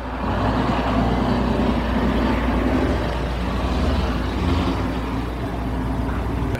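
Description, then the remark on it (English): The engine of Anderson Cooper's car rumbles steadily, a loud continuous low drone with road-vehicle noise holding even throughout and no voices. “We just made Anderson Cooper hide in his car because he couldn't face questions about really important issues like him training to be a CIA officer when he was in college.”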